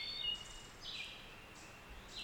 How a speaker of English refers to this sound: Can you hear it? Can you hear all those birds calling?